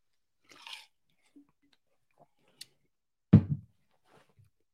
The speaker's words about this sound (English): So let me take a sip of my sweet tea, and then we're going to jump into it.